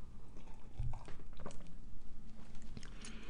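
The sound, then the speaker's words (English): Wet mouth sounds of someone sipping tea, with small slurps and a swallow over a few seconds, and no talking. “This is a long name and I need a sip of tea.”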